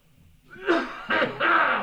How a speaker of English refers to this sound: Okay. Hang on. I got a cough.